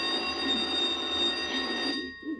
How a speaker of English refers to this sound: There goes the no-talking bell.